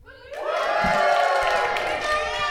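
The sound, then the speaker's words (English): A burst of cheering and whooping from a live audience at a recording rises quickly and holds steady and loud, with many high, overlapping shouts and yells blending together for a couple of seconds. “So, audience, if you can make some noise to tell the people driving in their cars right now that we're not indeed alone.”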